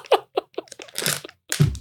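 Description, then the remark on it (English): Loud crunching of crisp food being chewed, a quick series of sharp bites in an uneven rhythm followed by a longer grinding crunch, with no talking. “We've been getting some complaints about us chewing.”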